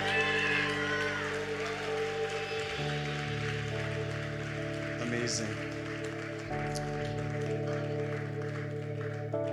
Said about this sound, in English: We're going to call out the first group to come on out. Come on out. Come on, round of applause, church.